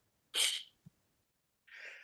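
A stifled sneeze, held in by closing the nose: a sharp, hissy burst, then a small muffled thump and a softer breathy exhale a moment later. No one speaks.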